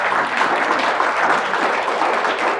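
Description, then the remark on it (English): An audience applauds steadily, a dense wash of many hands clapping at once, fairly loud and sustained without any voices standing out. “Yeah, you can clap.”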